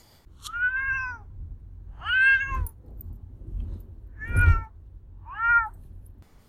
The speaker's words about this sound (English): Okay, now we will move to Duarte's corner, where my cat Duarte will give his opinions on Eclipse.